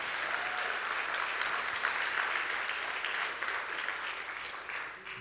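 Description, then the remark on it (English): A church audience applauds God steadily, a dense wash of many hands clapping at an even level for about five seconds before tapering slightly at the end. No one speaks over it. “Come on, give it a round of applause for God.”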